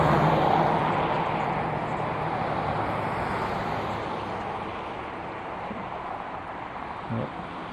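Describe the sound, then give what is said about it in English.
Steady, broad roar of passing road traffic, a continuous wash of tire and engine noise that swells slightly at the start and stays loud throughout, with no voices. “Cars drowned out pretty much any cool flybys the geese were going to do.”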